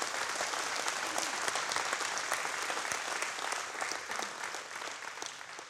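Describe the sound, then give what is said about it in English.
Sustained applause from an audience during a sermon, given in honor of the preacher's mother, a dense steady wash of many hands clapping at once, holding at an even level for several seconds with no voices standing out. “Give a hand clap to my mom.”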